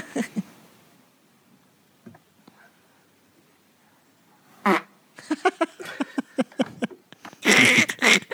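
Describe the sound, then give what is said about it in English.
After a quiet stretch, a short burst leads into a rapid series of sputtering fart sounds from a woman at the end of doing yoga, ending in a long, loud, raspy blast. “There's a lady doing yoga and she farted at the end.”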